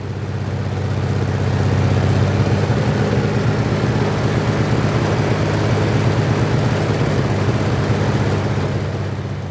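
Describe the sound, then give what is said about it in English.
A large Merlin piston aircraft engine runs steadily at a Merlin engine run event, a deep, throbbing roar with dense low harmonics that holds constant throughout, with no voices. “And you're here at the Merlin Engine Run just to hear the engine, just to see the engine?”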